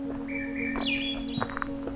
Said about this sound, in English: Swainson's thrush is a bird species that is more likely to be heard than seen. Its song is an upward spiraling flute-like melody and can be heard in the summer deep in the forests of Canada and parts of the United States.